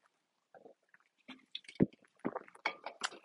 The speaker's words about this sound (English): I'm gonna take a sip of water or of my drink. I'm sorry. I'm having a Trader Joe's lime margarita.